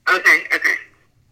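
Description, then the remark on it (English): Tinny, garbled feedback from a phone on speakerphone: four quick warbling bursts of echoed, voice-like sound, fairly loud, fading out after about a second. “Hey, do one of y'all got your phone on speakerphone? I got mine on Bluetooth, but I can take it off. Yeah, that's what it is. I'm hearing feedback.”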